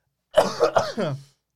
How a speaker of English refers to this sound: I'm going to cough.